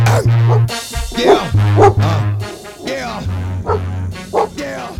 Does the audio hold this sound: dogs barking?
yes